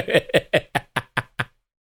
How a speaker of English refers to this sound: Knock.